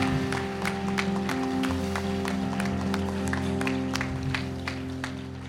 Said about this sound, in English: Let it get in you right now. Clap your hands right now.